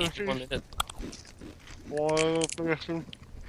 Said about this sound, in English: Now we're gonna start crunching in 5, 4, 3, 2, 1, and go. Oh wow, that's crunchy. Two little fishies.